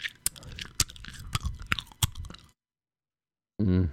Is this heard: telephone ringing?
no